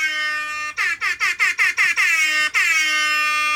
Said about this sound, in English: Oh, my. I changed the air horn for you. I accidentally changed mine.